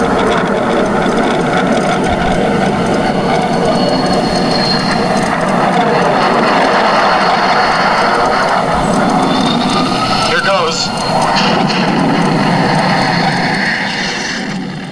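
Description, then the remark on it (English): Loud, steady roar of fighter jet engines in a film scene where fighter jets, one piloted by Clint Eastwood's character, attack a giant tarantula; dense and continuous with a brief dip near the end, and muffled voices mixed in underneath. “Plus, you get a very early role from Clint Eastwood, who plays a fighter jet pilot tasked with killing the giant tarantula.”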